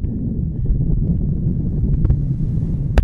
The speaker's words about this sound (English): Sorry, another car.